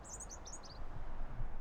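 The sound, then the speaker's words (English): A European robin sings from a tree in mild weather, a short burst of thin, high, trilling notes close by, fading out after a moment while a low outdoor rumble continues underneath. “It's extraordinary to be so close to a little robin. I can see his beak moving.”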